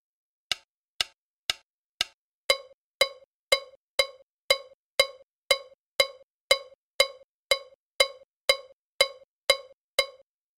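The bell timeline pattern of the ensemble piece Jam Time played alone: about twenty sharp, ringing metallic strikes in a steady, even pulse, the first few lighter and thinner before the rest sound fuller and louder.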